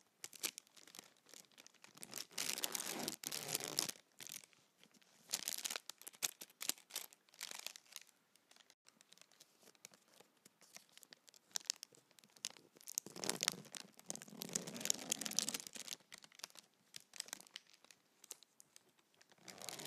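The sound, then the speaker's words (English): Raspy zipping of a double zipper, pulled in several bursts with short pauses between, some strokes longer and louder than others, with no talking. “So I will go with double zip.”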